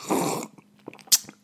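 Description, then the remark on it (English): A noisy slurp of hot coffee lasting about half a second, followed by quiet mouth sounds, a swallow and a couple of short breathy clicks. “In fact, I'm drinking coffee right now. I don't know if you can tell. Here's a slurp.”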